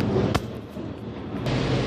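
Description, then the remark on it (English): A train rumbles past in a steady, heavy low roar, broken by two sharp clanking bangs, one early and one near the end. No one speaks. “Hold on, the train coming.”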